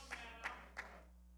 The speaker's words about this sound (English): I got my wife hand clapping. That's about it.